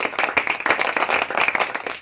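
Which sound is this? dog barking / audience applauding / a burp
audience applauding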